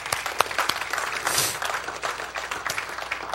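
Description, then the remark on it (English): A crowd breaks into steady applause, many hands clapping at once in a dense, crackling wash that holds at a fairly even, moderate level throughout. “Let's give another round of applause for you guys.”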